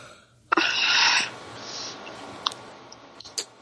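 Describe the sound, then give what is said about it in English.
A loud, breathy yawn opens with a sharp inhale and tapers into a softer, drawn-out exhale, followed by a few faint clicks and mouth noises. “Man, you need to stop yawning.”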